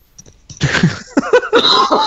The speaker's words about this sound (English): Okay, you two are dying. What's going on here? … all right, coughing.